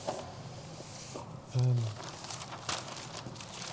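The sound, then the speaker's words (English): Rustling and crinkling of paper being handled, with scattered soft crackles and a few sharper rustles, plus a brief low murmured voice partway through. “Oh no, there's something here. There's a bit of paper here.”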